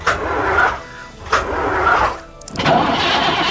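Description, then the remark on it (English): A park train's engine starting: three loud, rough cranking bursts with short gaps between them, the last one catching and rumbling on. No one speaks. “If you wouldn't mind stepping into this park train, we'll head off.”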